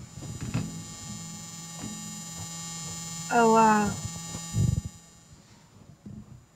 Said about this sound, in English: And if you listen real quick, you can hear the sound of my pump, because I don't have a pulse or heartbeat anymore. So this is what you get.